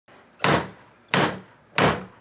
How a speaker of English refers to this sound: I'm about to get the knock, but I'm doing the knocking this time. Hey, I'm excited. Watch this, guys. Let's go.